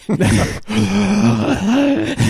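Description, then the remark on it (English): A voice imitates exaggerated, loud heavy breathing: a short huff, then one long, drawn-out, groan-like breath with a voiced, throaty edge. “They're like, what's with the breathing?”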